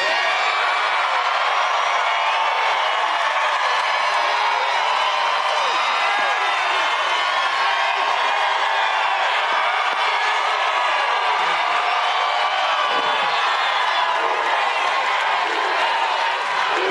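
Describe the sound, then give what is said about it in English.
A large crowd cheers loudly and steadily for about seventeen seconds, a dense roar of shouts and whoops with scattered clapping, holding an even level throughout without letting up. “The crowd loved it.”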